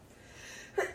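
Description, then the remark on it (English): A single short sneeze bursts out near the end, preceded by a faint breathy inhale. It sounds fairly quiet, with no talking around it. “Bless you.”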